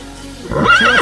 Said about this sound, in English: What if you went to see these guys at a show? It turns out it was just horses that came out on stage.